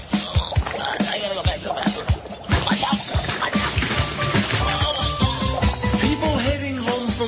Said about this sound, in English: Oh, you hear my stomach bubbling? Oh, it's bubbling.